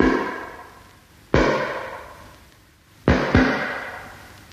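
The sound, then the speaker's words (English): Three heavy, hollow knocks on a ship's metal hull, one alone and then two in quick succession, each ringing out in a long, reverberant decay. No one speaks. “It's as though somebody were walking around the ship and tapping it to see what it was made of.”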